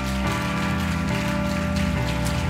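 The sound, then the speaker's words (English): An audience claps their hands in a dense, continuous patter of applause that stays steady throughout, with sustained low musical tones humming underneath. “Would you clap your hands and thank God for his word?”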